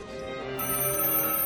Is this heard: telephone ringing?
yes